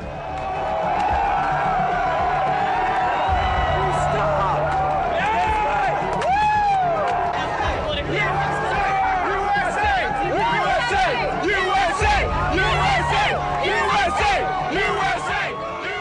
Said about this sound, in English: Cheering in the streets there after the news on the 2nd of May 2011 that the US military had killed the founder of Al-Qaeda, Osama bin Laden, after a raid on a compound where he'd been hiding out near the capital of Pakistan.